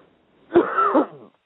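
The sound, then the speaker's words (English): A single deep, forceful cough from a man during a prayer commanding spirits to come out in Jesus' name, opening with a sharp burst and trailing into a rough, voiced rasp for about a second before stopping. No talking. “Just take another deep cough, brother, and just cough it out.”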